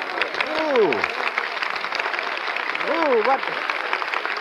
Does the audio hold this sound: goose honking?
no